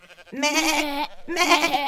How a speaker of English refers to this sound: And when the dawn came, his little sheep started bleating to be let out.